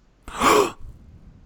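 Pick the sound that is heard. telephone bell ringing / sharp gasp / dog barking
sharp gasp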